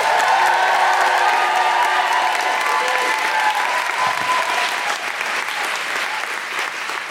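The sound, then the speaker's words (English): A large audience claps steadily in a dense, sustained wash of applause, with scattered cheers and whoops rising above it as the host, Deborah Frances White, is welcomed to the stage, before the clapping gradually softens toward the end. “Please start clapping, cheering, and welcome to the stage your wonderful host, Deborah Frances White.”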